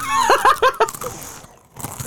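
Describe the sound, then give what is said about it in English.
Someone chewing pepperoni: four quick, moist crunching bites in a steady rhythm, then quieter mouth sounds as the chewing trails off. “I'm just eating pepperoni.”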